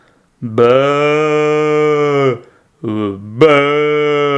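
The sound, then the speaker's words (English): A person imitates a sheep with two long, drawn-out bleats, loud, the second rising and wavering after a short pause, with no other talking. “And I'm quite sure that I'm not a sheep either. You know, I mean, I could pretend to be one.”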